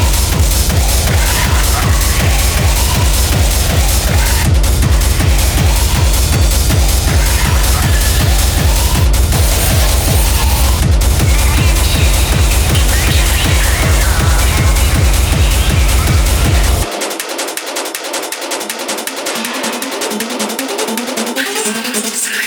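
A loud electronic dance track with a steady, pounding kick drum under dense layered synths; near the end the bass and kick drop out, leaving bright, buzzing upper synths playing alone.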